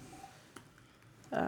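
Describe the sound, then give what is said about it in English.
A woman taps a few soft, scattered, irregular clicks on her computer keyboard, quietly, before a voice begins speaking at the very end. “She taps away on her keyboard.”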